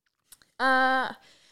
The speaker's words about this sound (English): Great timing for a sip.